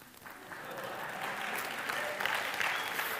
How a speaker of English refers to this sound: Oh, don't clap. I'm just halfway done.